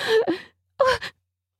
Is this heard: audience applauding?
no